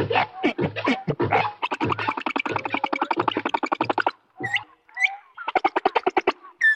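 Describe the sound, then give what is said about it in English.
Humpback whale song, sped up and raised in pitch, comes through as fast buzzy pulse trains and trills, then a few sharp whistled notes, sounding remarkably like a nightingale's song. It is clear and fairly loud, with no talking. “You'll find when you speed it up, raise the pitch.”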